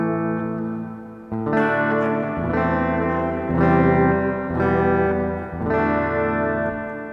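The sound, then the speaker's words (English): A plugged-in electric guitar strums a few sustained chords through an added reverb effect, each swelling with a thick, shimmering reverb that rings out between strums; loud, with no voices. “So right there, you have a couple of effects. You have, I think that's a reverb.”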